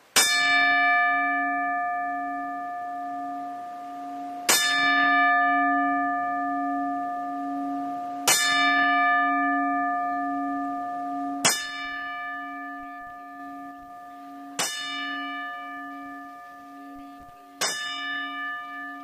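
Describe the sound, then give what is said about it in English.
A single bell tolls slowly and steadily in a ten-bell salute for professional wrestlers Kamala the Ugandan Giant and Bullet Bob Armstrong, six ringing strikes about three to four seconds apart, each loud and clear with a long humming decay. No voices are heard. “So before we get too much further in this edition of Turnbuckle Trash, we'd like to pause real quickly for the 10 bells for Kamala the Ugandan Giant and for Bullet Bob Armstrong.”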